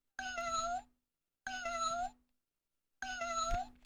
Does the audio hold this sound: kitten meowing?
yes